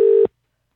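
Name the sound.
telephone keypad dialing tones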